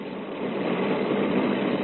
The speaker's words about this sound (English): Motorbikes roared into the north side car wash from all sides.